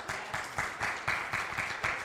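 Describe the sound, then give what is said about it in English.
An audience, those who quit smoking, applauds steadily for two seconds, a dense wash of clapping with a faintly rhythmic pulse running through it, moderately loud, with no voices over it. “Now, everybody that quit smoking is applauding.”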